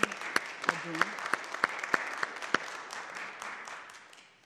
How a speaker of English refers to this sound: Yeah, we'll do a clap.